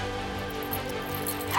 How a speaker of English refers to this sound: I scratched frantically at the door as I yelped.